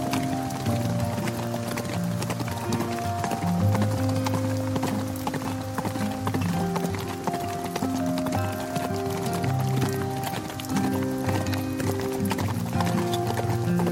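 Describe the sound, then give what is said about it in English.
Hooves of wild horses clip-clop in a steady, continuous patter throughout, many quick strikes overlapping as several horses move together about 400 yards away, fairly loud with a busy outdoor background. “And we're walking round, and suddenly, the clip-clop wild horses.”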